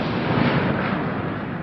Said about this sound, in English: Okay, let's see how close. And of course the video shows the jets. I mean, you can hear how loud that is. It's pretty damn close.